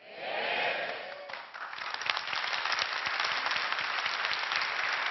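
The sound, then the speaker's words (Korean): An audience at a lecture breaks into sustained applause, a dense crackle of many hands clapping that swells after a brief opening murmur and holds steady and loud to the end. “박수가 너무 많아가지고 강의 진행이 안 되니까 제가 이따가 액션을 취하면 해주세요.”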